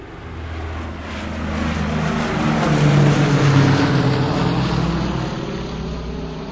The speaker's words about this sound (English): They had to build tanks. Planes.